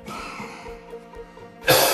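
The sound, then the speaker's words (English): A single sharp, harsh throat-clearing burst near the end, after a stretch of quiet, murmuring background, as a speaker reading aloud from the Bible clears the throat. “Had to clear my throat.”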